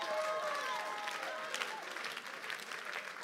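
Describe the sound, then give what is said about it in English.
A church audience breaks into sustained applause for the Lord during a sermon, a dense steady wash of many hands clapping at once, with faint tonal voices or shouts rising briefly above it. “Give the Lord a clap of you.”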